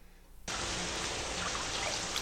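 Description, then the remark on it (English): After a moment of near silence, a steady rush of water starts abruptly and keeps going, a dense, even hiss of a shower running in a scene from a TV show, with no voices over it. “Here's a shower.”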